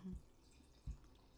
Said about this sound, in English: I'm pouring more rosé.